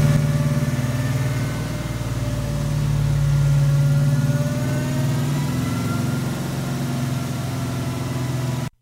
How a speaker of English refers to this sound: Sounds like any other engine. It sounds like combustion. You hear a big supercharger whining like crazy.